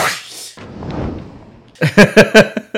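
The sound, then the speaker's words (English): A sharp hiss of noise gives way to a soft, rushing whoosh that swells and fades over about a second, followed by a few short bursts of someone talking. “Right, the caption just said whoosh.”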